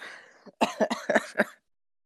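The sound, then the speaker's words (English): A faint breathy intake, then a quick burst of sneezing: about five sharp, loud, noisy bursts in rapid succession before it stops abruptly. No one speaks. “I tried to say sneeze alert, but while I was sneezing it, while I was saying it, I sneezed, so I didn't get to say sneeze alert.”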